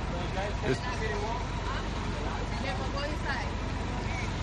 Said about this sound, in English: Now, here's some people getting on the bus as well. So maybe he's not going to keep us that long. That's a full bus getting off.